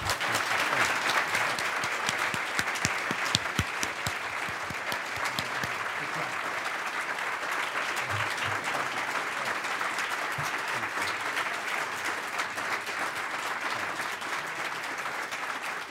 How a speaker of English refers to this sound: Okay, and now you all get to applaud.